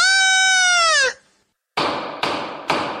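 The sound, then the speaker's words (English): A woman-screaming sound effect: a shrill, sustained cry lasting about a second before cutting off. After a short silence come three harsh, loud bursts of noise in quick succession. “Cue woman screaming.”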